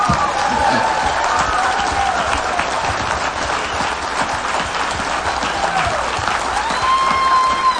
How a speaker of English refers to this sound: And let's give that round of applause to ….